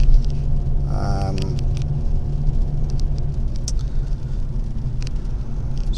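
Steady, heavy low rumble of engine and road noise inside a car driving into work, with a brief wavering tonal hum early on and a few faint clicks over the constant drone.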